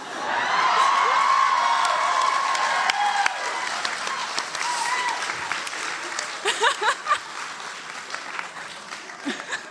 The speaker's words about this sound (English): Okay, so first of all, standing ovation.